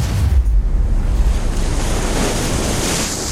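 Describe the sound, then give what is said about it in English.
Walls of water crash back down into the sea over an army of soldiers, a loud, continuous rush like heavy surf breaking, with a deep rumble underneath and a windy hiss throughout. No voices are heard. “And the walls of water splashed back down into the sea, covering all the Egyptian soldiers.”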